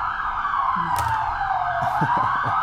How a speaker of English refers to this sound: I got some police in the background. Welcome to Mexico. Oh, it's so funny. I thought it was here. I was like looking out the window. Yeah. Or maybe I'm just going to let these guys, roll past.